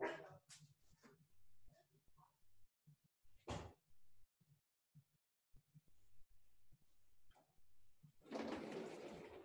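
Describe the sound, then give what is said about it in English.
A female German Shepherd dog barks in a few sharp, scattered bursts, with household thumps and a door-like rustle near the end. “And I have a German Shepherd, so she barks at everything.”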